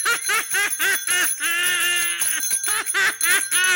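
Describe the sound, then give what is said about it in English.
A small bell rings rapidly and insistently, a loud run of quick dings that stretch into one longer, sustained ring before the rapid ringing picks up again. “Who gave her the bell?”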